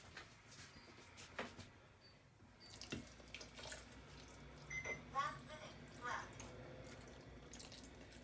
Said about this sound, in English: Okay, so I'm just going to fill up the jar again. So this is my 4th jar of water.